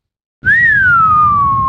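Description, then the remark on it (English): A single sustained human whistle, a clear pure tone that rises slightly then slowly glides downward, loud, over a low rumbling background. “Can you whistle, …?”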